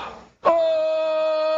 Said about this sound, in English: The self-defense yell, though.